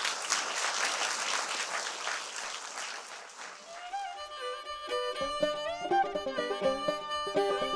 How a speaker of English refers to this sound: Thank you all for coming today and for allowing us to speak to you and for listening. And let's give one more round of applause for both of our speakers.